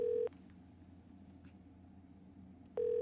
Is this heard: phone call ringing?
yes